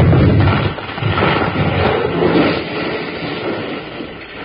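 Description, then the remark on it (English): A big wooden beam, set to fall right over a door, crashes down with a loud, heavy boom, followed by a long, rumbling clatter that slowly fades over several seconds, with no voices. “You sure were smart to figure on setting that big beam to fall right over the door, Colorado.”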